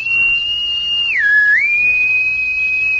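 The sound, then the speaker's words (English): A person whistles one long, steady, high note that briefly dips lower and then returns, held clearly and loudly for a few seconds like a signal call, with no talking. “Why do you whistle that way?”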